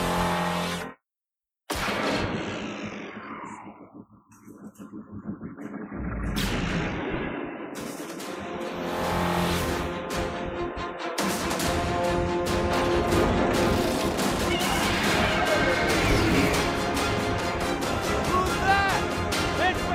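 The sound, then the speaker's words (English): Dense cinematic action effects from a movie's train heist scene: loud rumbling, whooshes and crashing impacts layered over a driving orchestral score, sustained and busy after a brief gap of silence near the start. “I want to play a short clip from ILM on the train heist.”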